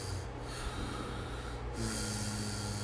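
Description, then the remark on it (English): Someone imitates a snore with their voice: a rough, drawn-out, breathy snort lasting a few seconds, moderately loud, with a raspier, buzzier stretch near the end. No one speaks. “It is used because human snoring often sounds like the pronunciation of the letter.”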